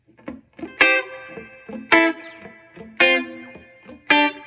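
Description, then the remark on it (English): Dry electric guitar rhythm chinks in a 1970s pop-country style, played with the echo off, land at a steady pace: four bright chord stabs about a second apart, each ringing briefly with quieter muted notes in between and no trailing echo. “probably take the echo off.”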